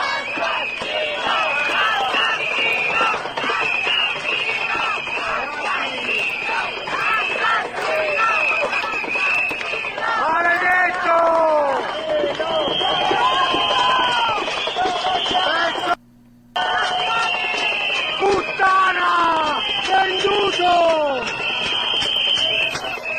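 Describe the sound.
A large protest crowd surrounds police, holding up pictures of victims. The crowd shouts and chants "Assassino!" in loud, overlapping Italian voices, rising in waves of yelling with steady background commotion, broken by a brief silent gap near the end before the uproar resumes.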